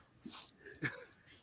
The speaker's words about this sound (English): Oh, there's a doggy. There's a doggy. Yeah. Doggy. He's too loud.